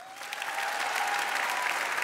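An audience in a hall claps steadily to show they think a man is innocent, a dense wash of overlapping handclaps that swells in the first half second and then holds at a fairly even level, with no voices over it.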